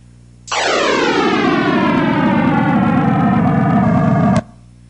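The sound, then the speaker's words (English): Real Big Bang sound waves, sped up so a few hundred thousand years fit into about seven seconds and scaled up by 42 octaves into hearing range: a loud, steady roar that bursts in abruptly, its layered tones sliding steadily downward in pitch for about four seconds before cutting off. No talking. “And it's speeded up, so those few hundred thousand of years go into about 7 seconds, and it's scaled up by 42 octaves to audible range.”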